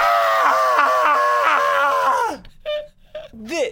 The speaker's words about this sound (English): you can scream now.